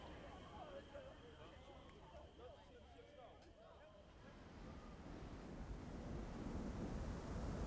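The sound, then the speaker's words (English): Water sloshes and laps steadily against the sides of a small skiff with a tin sail on the Salton Sea, the washing growing louder and fuller toward the end, with wind noise and faint muffled voices early on. “Water is lapping at the sides of the skiff.”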